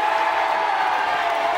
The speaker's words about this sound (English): The crowd is going crazy.